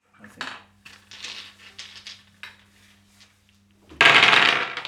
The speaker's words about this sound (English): Now we're going to be turning to special guest percussionist tonight, Guy Turner, to roll those six musician's dice. Guy, would you be so kind?